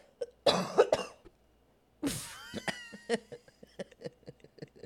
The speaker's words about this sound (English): I just coughed at you. I'm so sorry. I don't know what's going on. He literally coughed at me just then.